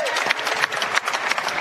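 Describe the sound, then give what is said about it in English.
A brief burst of applause from a small group at Bellevue Square Center Court for Seattle Seahawks center Austin Blythe, many hands clapping in a dense, steady patter, moderately loud, with no voices. “Clap it up one time for Austin Blythe.”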